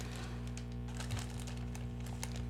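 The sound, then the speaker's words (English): Soft, irregular crinkling and rustling of snack packaging, a scattering of quick papery bursts over a steady low background hum, with no one speaking. “You guys are distracting me rustling around your snacks and gesticulating ambiguously.”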